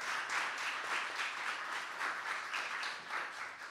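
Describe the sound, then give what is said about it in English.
Sustained audience applause at a festival for its main sponsor World Remit, many hands clapping in a dense, steady wash with slight swells in intensity, moderately loud throughout with no voices on top. “So I would like you to give them an applause for helping us make the festival.”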